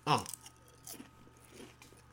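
Someone bites into raw carrot with a loud crunch at the start, followed by a couple of softer crunching chews over the next two seconds.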